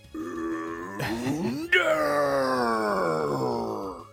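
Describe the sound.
A person imitates the roar of a Heracross with a loud, drawn-out groaning growl that swells, breaks into a sharper burst midway, then slowly falls in pitch for about four seconds.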